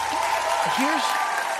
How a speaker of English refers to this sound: You guys ever do, you know, that deserves an applause, I think.